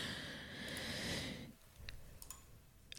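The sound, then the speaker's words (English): One long, breathy yawn for about a second and a half, soft, then fading into near-silence with a few faint mouth clicks. “I'm yawning.”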